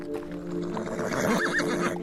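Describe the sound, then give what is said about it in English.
A horse whinnies with a wavering, rising and falling cry while hooves clop steadily underneath, moderately loud, with no voices, as horses are ridden up a switchback trail to the top of a ridge. “So you and your horses make your way up to the top of the ridge, and once you reach the top, you have entered the Delambere Vale.”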